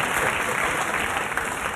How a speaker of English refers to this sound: And now they applaud me for giving them the finger.